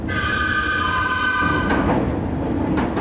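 The elevated L train on Kensington Avenue rumbles past overhead, loud and continuous, with a high metallic whine from the wheels fading out partway through and sharp clanks near the end.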